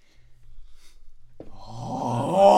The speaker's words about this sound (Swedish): Man ska bara hosta färdigt. Hur går det att hosta så här konstant i 25 minuter?